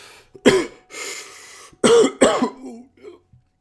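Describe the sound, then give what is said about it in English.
A handful of harsh, raspy coughs from a person after smoking a joint, a sharp burst followed by a throaty wheeze and then two quick hacking coughs trailing off into a rough breath. “passes the joint back to Mojo, coughing a little”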